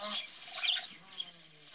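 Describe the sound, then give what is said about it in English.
Faint, busy birdsong chirps and twitters in the background, a quiet wash of high calls running throughout with a low murmur underneath. “So there's like all the birds in the background.”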